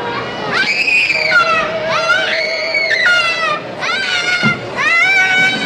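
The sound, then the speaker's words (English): A child screams in loud, high-pitched, wavering shrieks as he is thrown down a slide, several long cries running almost back to back over a noisy background with a faint steady tone underneath. “So when that child who I think mental illness just really screams as he's thrown down the slide, and that one did not sound good.”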